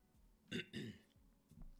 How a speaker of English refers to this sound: And you're going to have to excuse me throughout this episode because I appear to have developed a rather tickly cough in the last 10 minutes. So that's going to irritate us all the way through this episode, no doubt.